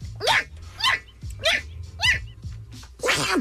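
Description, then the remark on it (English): A small Pomeranian dog sneezes again and again, about six quick, sharp snorts in a steady rhythm roughly half a second apart, fairly loud, with no one talking. “That's a Pomeranian sneezing.”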